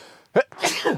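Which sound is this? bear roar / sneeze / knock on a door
sneeze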